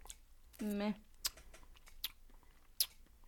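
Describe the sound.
A brief low hum from a voice, then three sharp, wet mouth clicks spaced about a second apart, close and fairly quiet, like lips smacking after a sip of beer.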